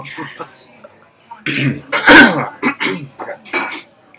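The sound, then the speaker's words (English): A single sharp, harsh cough bursts out, surrounded by brief murmured vocal sounds before and after. “this is where you usually cough.”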